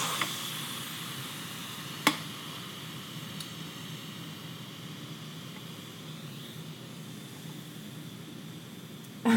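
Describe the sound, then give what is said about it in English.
Steam vents steadily from an electric pressure cooker after its venting knob is turned to the venting position, with a folded towel over the vent. A continuous, muffled hiss lasts the whole stretch, with a single sharp click early on and no one speaking. “I put a folded towel over this vent, and I turn the venting knob to the venting position.”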